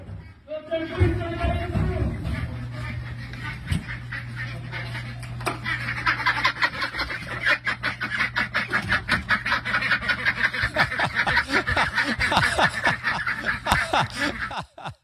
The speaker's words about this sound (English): Oh, those ducks are cracking. They're quacking me up. They're quacking me up.